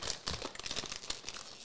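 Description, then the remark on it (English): Crisp, crackly crunching of potato chips, a dense run of irregular snaps and crinkles over almost two seconds at a fairly steady, moderate loudness, with no voices. “It's that crunch, though. I wish you could hear the crunch. It sounds real good.”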